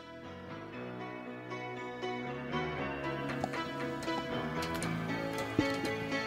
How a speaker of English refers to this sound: Clock.